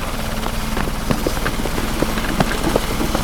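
Helicopter rotors thump steadily as a patient is taken off the helicopter, a loud continuous chopping drone with rhythmic beating that fills the whole stretch without pause.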